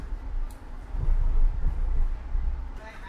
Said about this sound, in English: Just crossing a tram track.